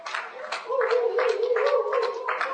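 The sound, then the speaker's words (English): A crowd claps in quick, uneven bursts at a steady, moderately loud level, with a sustained voice-like tone holding underneath the applause, clapping for the singles, the day's VIPs, as they take their seats. “We are still clapping, for our singles.”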